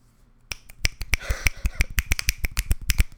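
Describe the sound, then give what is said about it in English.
After a brief quiet moment, a steady flurry of crisp finger snaps begins, sharp bright clicks in a quick, slightly irregular rhythm, as if several people were snapping together, with no talking. “We snap for you”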